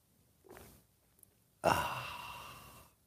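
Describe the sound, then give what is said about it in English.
A brief, soft slurp of someone sipping hot coffee, then a pause and a long, loud, breathy sigh of satisfaction that trails off over about a second. “Fill it with your favorite liquid. I like coffee. And join me now for the unparalleled pleasure of the dopamine hit of the day.”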